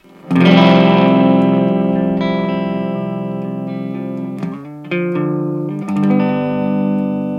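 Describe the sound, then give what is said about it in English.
A clean electric guitar, a 2016 ES-339 run through an OC-10 loop into a Vox AC-15 amp with a little reverb and EQs at noon, plays a strummed chord that rings out with a light reverb tail, followed by a few more chord changes near the end. It's played alone and sounds fairly loud. “So this is going to be the clean tone, a little bit of reverb, EQs at noon.”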